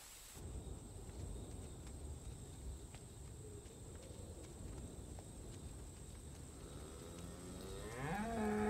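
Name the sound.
cows mooing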